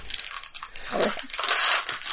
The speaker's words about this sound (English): Making the crunchy noises.